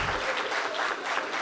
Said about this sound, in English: So even though he's not here, if we could just give him a round of applause, I feel like he can hear it.